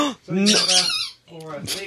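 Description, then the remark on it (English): A squeaky toy squeezed twice in quick succession, each squeak loud and shrill with a wavering, drawn-out pitch. “Or I'll have a squeaky.”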